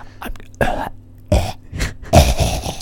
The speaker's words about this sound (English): I don't think anybody's ASMR triggers is, oh, I love it when I hear like a really phlegmy cough. Oh, it puts me right to sleep. I really needed to like cough, but I was like, oh no, I'm in an ASMR moment.